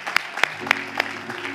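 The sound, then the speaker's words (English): A church audience, told to clap after a sermon, claps in unison: four sharp, evenly spaced beats about a quarter second apart, over a low steady hum with scattered softer claps between. “All right, everybody clap your hands.”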